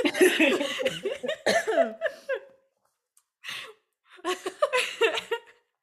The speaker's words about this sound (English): I like that we're all coughing, but for different reasons.